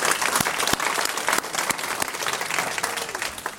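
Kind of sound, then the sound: crowd, round of applause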